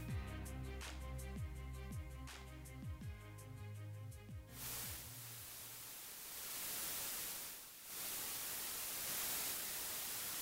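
A few seconds of warbling electronic tones give way to a steady, loud wash of hissing static on the American Family Radio audio line, heard in the headphones, briefly dipping once before continuing without any voices.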